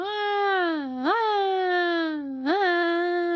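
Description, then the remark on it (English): A voice imitates a wailing ambulance siren, holding a steady droning tone that twice swoops sharply upward before settling back into a long sustained wail. “The kids likened the noise to an ambulance siren. Can you do an impression of this?”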